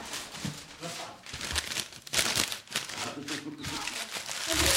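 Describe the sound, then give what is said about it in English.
Paper being folded into an origami crane, with irregular crinkling and crisp rustling bursts, now sharper, now softer, as a voice murmurs briefly underneath. “And now, 15 minutes of origami.”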